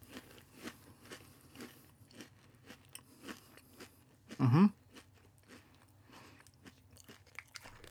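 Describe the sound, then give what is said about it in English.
Crunching on spicy, very dry edible crickets: faint, repeated soft crunches and chewing clicks throughout, with one louder, sharper crunch burst midway, and no talking. “So with that, I'm going to do a little ASMR, and I'm going to give these crickets a try, buddy.”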